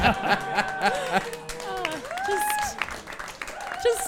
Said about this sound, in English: Just the easiest applause. I love it.